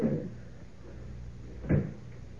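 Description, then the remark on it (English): A closet door is shut and locked with a key, with a single solid thump near the end and a softer knock at the start. “Door's locked, and I've got the key.”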